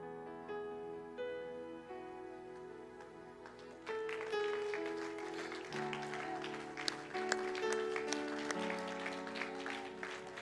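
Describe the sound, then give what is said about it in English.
A church audience claps along with sustained organ-like music. The clapping grows busier and louder partway through, with irregular sharp claps over the steady chords. No one speaks. “If you just heard and understood what I read, your hand clap wouldn't be this.”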